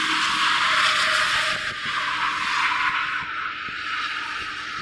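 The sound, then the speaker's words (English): A long GO commuter train rolls past in a loud, steady roar of hissing rail noise, with a faint high metallic squeal running through it and no voices. “That's the GO train!”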